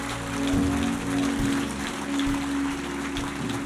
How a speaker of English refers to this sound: Come on, let's give God a big clap and thank you. Beautiful.